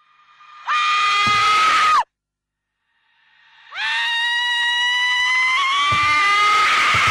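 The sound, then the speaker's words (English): Two loud, piercing screams from a horror video game's audio, separated by a brief silence; the first is short and shrill, while the second rises sharply and holds a long, strained, wavering wail until the end. “So the gameplay and visuals aren't great, but it's the audio that really gets people. The screaming seems a little too real.”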